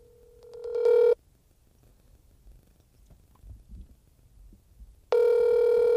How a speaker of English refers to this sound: It's ringing. Hello? Hey, it's ringing.